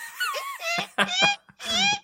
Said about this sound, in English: That whiteboard is squeaky as fuck.